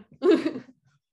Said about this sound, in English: I had to cough.